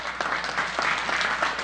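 An audience claps steadily for a moment for a woman called up to the pulpit to share her testimony, a dense wash of many hands with a bright, crackling texture and a few louder claps standing out, no voices rising above it.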